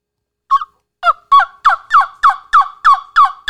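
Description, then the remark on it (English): A hand-played turkey call, used for locating birds, sounds a rapid series of about nine loud, clear, raspy yelps in a steady rhythm, each a clipped, high, harmonic note, with no talking over it. “It's a turkey call that I wish I could.”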